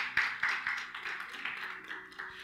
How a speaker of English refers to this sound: God is good. Give him a round of applause, church. Amen.